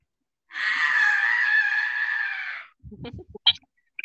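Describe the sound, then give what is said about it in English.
A person lets out a long, loud, shrill screech with their voice, imitating a bat, held steadily for about two seconds, followed by a few soft clicks and mouth noises. “So now the bat turns around, screeches in the air.”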